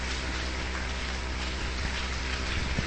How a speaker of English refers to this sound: I believe you can clap better than that.